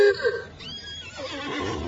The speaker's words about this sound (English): One of these things is a horse. At least it looks more like a horse than anything else I can see on four drinks. Yeah, it is a horse. But it's covered with a kind of awning, like a tent. In fact, Sing Sing, this horse is wearing a mask over his head